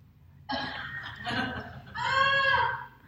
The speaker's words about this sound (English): Is this the original cow? Yeah, that's the cow.